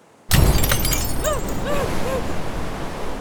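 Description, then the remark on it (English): Car window glass shatters inward with a sudden loud crack, followed by a sustained crunchy rush of noise and a few bright tinkling notes as shards scatter and fall. “Maggie's window exploded inward, peppering the side of her face and head with glass”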